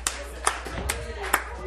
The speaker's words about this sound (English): But you did good. You done did good. Round of applause.